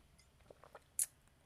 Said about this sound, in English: Okay, I'm going to take just a breath and a sip of water, and then we're going to go through some common mistakes.